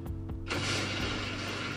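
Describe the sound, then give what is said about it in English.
A couple of faint clicks from a free soundboard give way to a sudden loud gunshot-and-bomb blast that swells into a sustained, roaring rumble of an explosion sound effect, filling the rest of the moment with no voices. “But there's like a bomb, a gunshot, and a click click.”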